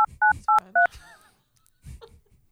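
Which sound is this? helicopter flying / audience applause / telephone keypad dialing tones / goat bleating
telephone keypad dialing tones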